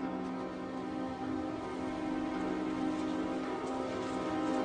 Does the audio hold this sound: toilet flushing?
no